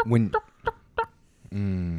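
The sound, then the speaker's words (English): A voice imitates wild turkey clucking: four short, sharp clucks in quick succession, then a longer drawn-out call, fairly loud with no other sounds. “You heard turkeys, though, right?”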